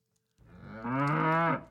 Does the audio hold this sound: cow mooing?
yes